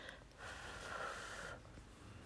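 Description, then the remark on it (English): A loud breath pushed out through the nose, a snort-like rush of air lasting about a second, with no talking. “Sorry, I'm breathing really loud.”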